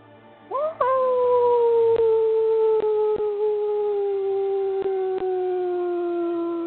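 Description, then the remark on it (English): A single long wolf howl rises quickly, then holds and slowly sinks in pitch for several seconds, loud, with faint clicks and no talking. “You and your brother continue to howl one more time, as loud as you need to.”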